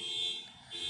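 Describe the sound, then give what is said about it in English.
A high, shrill electronic car alarm tone sounds steadily, dipping briefly in the middle before returning, with no voices; it has been beeping since morning. “Why don't you stop your car?”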